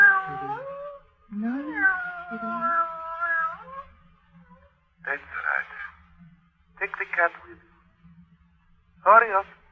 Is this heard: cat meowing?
yes